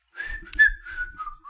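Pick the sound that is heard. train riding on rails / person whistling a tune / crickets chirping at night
person whistling a tune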